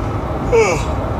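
A single breathy yawn with a short voiced, slightly falling tone in the middle, over a steady background hiss, with no talking.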